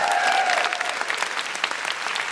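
A stand-up comedy show audience claps steadily for a couple of seconds for an audience member, a dense, even patter of many hands, with a brief cheer or whoop rising faintly over it at the start.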